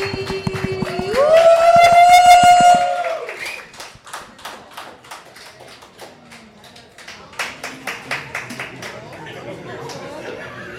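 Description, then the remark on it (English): A long, loud vocal whoop rings out first, then the audience at a comedy show, America's Next Top Comedian, claps: scattered sharp claps that settle into a brisker, fairly steady rhythm before thinning out, with some background chatter. “Start clapping.”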